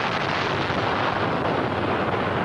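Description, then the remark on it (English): The aftermath of a huge underwater explosion blasting off the top of Ripple Rock at 9:31 a.m. Pacific time roars steadily, a dense, loud rumble of debris and water thundering without pause, with no voices present. “And at 9:31 a.m. Pacific time, off went the top of Ripple Rock.”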